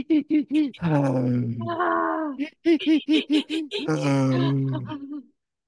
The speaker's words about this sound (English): You want to do a little bit of breathing right now? 5 quick, very fast breaths in, and then one kind of exacerbated breath out.